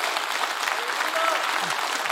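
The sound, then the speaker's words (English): An audience claps their hands in praise to the Lord, a steady, dense burst of applause, loud and sustained throughout, with faint voices murmuring underneath. “You ought to give the Lord a hand clap of praise.”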